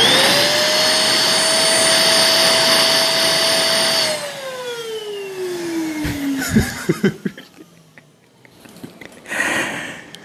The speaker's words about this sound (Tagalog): Ito naman ay relaxing sound na baka magulat kayo. But this is very relaxing. Ang tawag dito, vacuum cleaner.